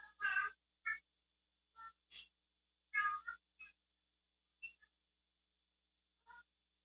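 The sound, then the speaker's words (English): A cat meows repeatedly in short, bright calls, loud at first, then a string of smaller, fainter mews with gaps of silence between them. “Leave that kitty alone.”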